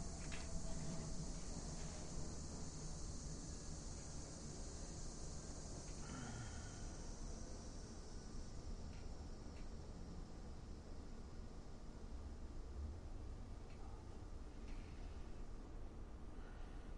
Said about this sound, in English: The cicadas are out there. They're clack-clacking away.